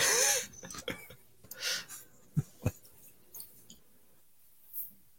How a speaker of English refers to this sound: Yeah, I was just typing something in there. Sorry.